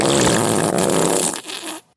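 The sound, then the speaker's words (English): A long, drawn-out fart, loud, rumbling steadily for nearly two seconds before sputtering out and cutting off abruptly. No one speaks. “let loose a long fart.”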